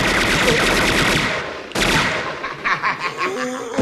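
Gunfire from a violent shooting in a movie scene: a rapid burst of loud gunfire rattles continuously for over a second, then a sharp blast, followed by a tail of fainter, sputtering shots.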